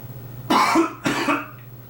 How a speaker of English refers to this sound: It's actually why I'm coughing.